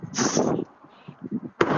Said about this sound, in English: Yep, and there's the cannon, and they're off.